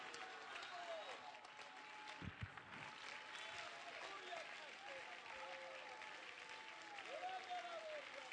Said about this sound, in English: Stand up, clap your hands, and shout, I need a revival.